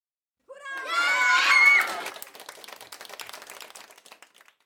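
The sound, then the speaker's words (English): A class of children in a classroom cheers and shouts excitedly, then their voices give way to a burst of scattered clapping that gradually thins out. “The entire class joins in.”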